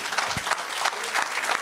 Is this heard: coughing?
no